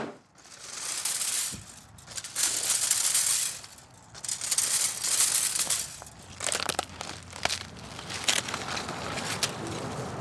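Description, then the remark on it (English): Scissors snip through mint stems as mint is harvested, amid rustling, crinkling leaves, with several sharp clicks of the blades over a steady bed of crisp, papery crackling. No one speaks. “Giving me the scissors, snipping it off. Yes, sounds beautiful.”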